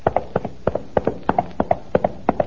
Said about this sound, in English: I see Don Diego's horse approaching.